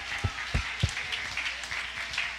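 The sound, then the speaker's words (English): A crowd claps and applauds in praise of God in a dense, steady patter, opening with three heavy, rhythmic thumps about a third of a second apart before settling into continuous clapping, with no voices. “Come on, I wonder if you believe that, if you would clap your hands and give God praise in this place right now.”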